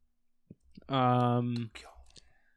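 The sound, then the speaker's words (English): A handful of scattered keyboard clicks, light and irregular, with a sustained voiced tone, like a held hum or vowel, rising loudly over them partway through. “Ignore this typing sound. It's not me looking up cast.”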